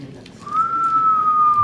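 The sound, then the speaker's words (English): A thin, steady whistling tone of wind forced through a crack under a door threshold holds one high pitch for just over a second over a soft rumbling background. “So, have you ever heard like the wind coming through a crack under the door threshold?”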